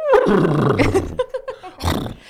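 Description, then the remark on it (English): A person loudly imitates a horse neigh: a long, strained, harmonic whinny that wavers and slides downward, followed by a few choppy sputters and one more short, breathy burst. “Can't wait to see a clip of us doing horse noises.”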